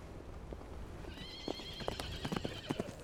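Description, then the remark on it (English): A horse with a rider trots up a beach by a bay with an uneven patter of hoof clops, then lets out a high, wavering whinny over the steps, all against a steady low background rush. “I sat on the beach and watched as Grace came trotting back up.”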